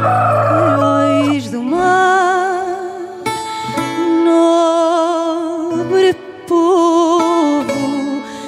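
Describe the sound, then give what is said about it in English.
A rubber chicken lets out long, loud, wheezy squawks, its pitch wobbling and dipping, with a few brief breaks between blasts, with no talking. “It's the same thing as going to a rave and you have the drop coming and the bass is thumping and everybody's getting ready and all of a sudden it goes to that cutout and they just hit you with a rubber chicken.”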